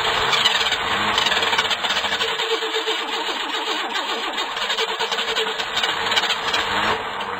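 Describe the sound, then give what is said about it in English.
A combustion engine in a basement cranks and sputters into life, a loud, rough mechanical churning with rapid rhythmic pulses that carries on steadily for several seconds. “I never thought we should run a combustion engine in your basement.”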